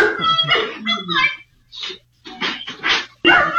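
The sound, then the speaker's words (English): Dogs bark and yelp in a string of short, uneven bursts with brief pauses between, moderately loud, with some whiny, drawn-out vocal sounds mixed in, as caught on security camera footage. “And so the dogs are kind of barking.”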